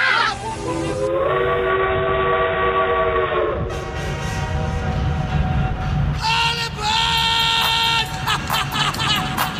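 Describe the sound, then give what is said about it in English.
A train whistle blows in long, loud harmonic tones, sounding twice with a brief break, over a rumbling, chugging rail background that runs throughout. “All aboard. It's time for the train yard with Thomas the Tank.”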